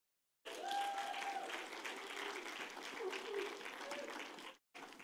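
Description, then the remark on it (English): A church audience at Overflow Church bursts into steady, sustained applause and cheering as a couple comes up, with scattered whoops, a brief high whistle-like yell riding on top, continuing for about four seconds before cutting off abruptly. “We have all kinds of people cheering for you.”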